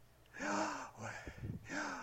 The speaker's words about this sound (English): You ever done that? Really breathing hard? Yeah, isn't that amazing?